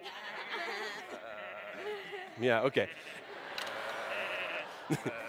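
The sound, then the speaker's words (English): A brief, wavering bleat from masked people mimicking sheep, playing sheep behind a gate in a group game, rises amid a murmur of group chatter, followed by a short spoken reply and a couple of faint thumps. “And what happens is the okay, guys, please make sheep sounds.”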